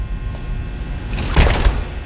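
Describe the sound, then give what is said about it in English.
The heavy door of a soybean growth chamber at the Pioneer campus in Johnston, Iowa swings shut with a low thud and a short rattle, followed by a second softer knock, over a steady low hum; no one speaks. “I'm entering one of the growth chambers at the Johnston, Iowa campus. The door is closing.”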